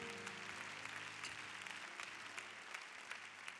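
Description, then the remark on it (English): A Church of God in Christ audience applauds steadily to welcome visitors from across the nation and around the world, a dense, continuous patter of many hands clapping with a low musical hum sustained underneath throughout. “Let's give them a rousing applause and welcome them.”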